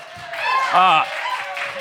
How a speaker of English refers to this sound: So give a big round of applause for your cast as they come on stage right now.